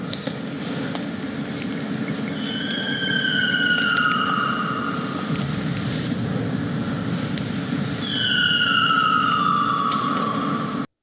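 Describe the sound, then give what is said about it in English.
An otter gives two long, shrill, bird-like cries, each sliding downward in pitch with a few seconds between them, over a steady low droning rumble; recorded at night by a Zoom recorder on an abandoned island in Ireland. “Yes, the king of the otters and his insane call. It kind of sounds like a bird almost.”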